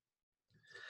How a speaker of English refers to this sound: Look, you're still yawning. I'm still yawning. So there, I need more caffeine.